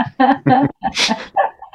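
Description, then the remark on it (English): A puppy lets out a quick run of short yips and barks, then a breathy, higher whimper that trails off into softer whines. “He's really bad for podcasts, that he's a puppy.”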